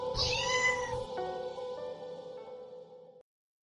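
A cat lets out one long, drawn-out meow that starts strained and bright, then settles into a steady wavering cry for about three seconds before cutting off. It is fairly loud, with no talking.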